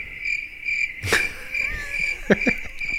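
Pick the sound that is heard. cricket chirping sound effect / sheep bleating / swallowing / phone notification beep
cricket chirping sound effect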